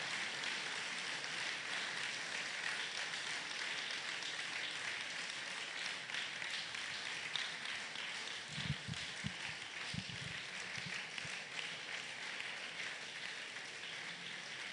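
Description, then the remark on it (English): An audience gives a clap offering to the Lord, clapping steadily for about fifteen seconds, a dense, even wash of many hands with no break and no talking, plus a few low thumps partway through. “Clap because you mean it.”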